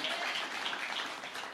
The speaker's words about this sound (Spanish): Entonces le damos un aplauso nuevamente a Dios. Siempre hay un motivo para alabar a Dios.